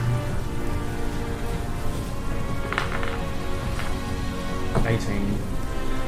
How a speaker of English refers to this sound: Disadvantage because of rain.